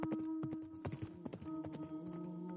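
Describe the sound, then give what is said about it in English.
Horse hooves clip-clop in a quick, uneven galloping rhythm, fairly loud, over a steady humming drone underneath, as riders kick off on their horses toward the capital city. No one speaks. “So you run back to your horses, untie them, and then you take the horses and you kick off. You start heading back towards the capital city.”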